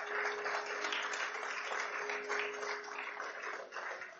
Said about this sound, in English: God is so good. Give him a round of applause.